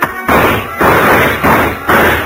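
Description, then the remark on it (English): A chair is knocked over onto the floor, clattering in a series of loud, rough crashing bursts, several harsh scrapes and bangs following one another in quick succession with no voices. “I knocked over a chair to give him something to shoot at.”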